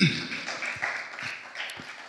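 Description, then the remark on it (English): A round of applause from a church audience marking the church's 34th anniversary, a steady wash of many hands clapping at moderate volume, with a few sharper claps standing out over about two seconds. “Yeah, there's a round of applause.”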